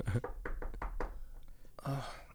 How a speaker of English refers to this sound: Okay. I'll do the knock. Here we go.